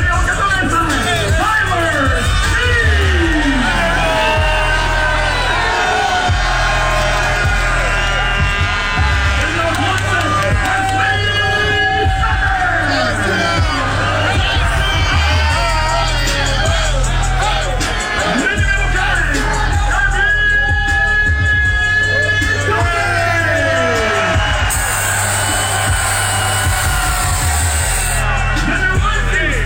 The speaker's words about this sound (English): The crowd was there in full throat cheering it on.